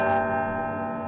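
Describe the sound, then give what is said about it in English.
A large historic bell of Albany City Hall is struck once and rings out loudly, its rich metallic tone humming and sustaining evenly with no voices present. “the historic bells of Albany City Hall.”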